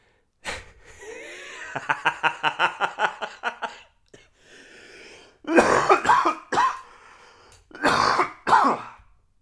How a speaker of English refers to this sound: Coughing nowadays can make people think, oh, is he sick? What's he carrying? What's he doing?